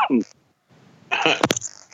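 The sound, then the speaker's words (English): A person smoking a cigarette gives a breathy exhale followed by a harsh, raspy cough with two sharp, loud bursts, then a rough throaty trailing sound, preceded by a short vocal sound. “But, excuse me, yeah, I'm smoking, so that's why I'm coughing.”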